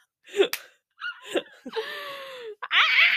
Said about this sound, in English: Okay, sorry, we can cut the scream out. I'm supposed to say, what was the scream for? I don't know.